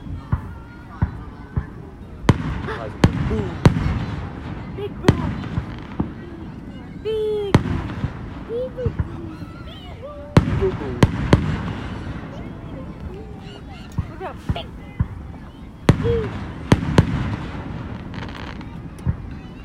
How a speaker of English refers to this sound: I thought that car door closing was another firework launching.